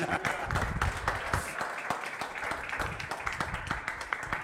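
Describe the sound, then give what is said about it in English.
A crowd claps steadily during a sermon, a dense patter of many hands at a fairly even level for several seconds, with a few louder individual claps standing out in the wash. “If you're going to clap, clap well.”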